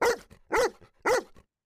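Three loud, sharp dog barks in an even rhythm, about half a second apart, with no other sounds around them.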